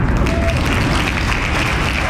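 Audience applause fills the whole stretch, a dense, steady wash of many hands clapping with crowd noise mixed in, loud and unbroken from start to finish.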